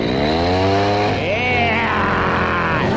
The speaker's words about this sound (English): You're in luck when you got a mechanic chainsaw. You've got power by the hour in your hand.